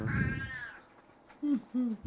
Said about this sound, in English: Old cat.